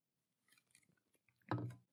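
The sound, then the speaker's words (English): A wet sip of beer: faint smacking mouth clicks lead into one short, louder slurp near the end, with no talking. “A sip of beer for him.”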